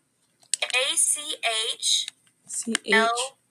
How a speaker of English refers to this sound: I hear you typing. I'm not typing. And whose keyboard's that? It's not a keyboard, it's my controller.